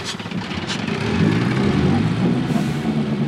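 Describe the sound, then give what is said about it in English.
Bumper boat motors on a lagoon drone steadily, a continuous low rumbling engine hum that swells slightly and holds for several seconds with no talking. “This is so fun. I love bumper boats.”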